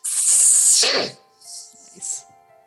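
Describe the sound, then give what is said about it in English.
A voice imitates the angry hiss of a creature punched in the nose: one long, loud, breathy hiss that ends in a rough throaty burst, then two shorter, softer hisses. “Well, either way, it punches him in the schnoz and he gives another angry hiss.”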